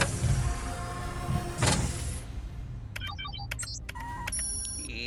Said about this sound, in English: But mind your feet, I'm gonna slam the escape pod!